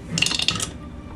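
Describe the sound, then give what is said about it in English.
A pair of dice, rolled for a shot in a tabletop game, clatter and tumble across a surface in a quick burst of bright, hard clicks lasting about half a second, landing on a 5 and a 2, then settle into quiet with no voices. “That's a 5 and a 2 on the dice.”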